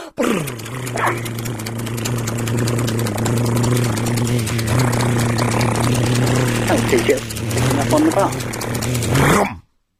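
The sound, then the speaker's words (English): A voice does a sustained rolled-tongue drum roll, a steady, buzzing low trill that runs unbroken for about nine seconds before stopping abruptly, with a few pitch wobbles near the end. “Okay, all right, another drum roll.”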